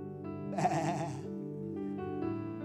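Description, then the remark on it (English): A sheep bleats loudly, one wavering cry, over a steady droning hum that carries on underneath after the bleat fades. “I saw sheep.”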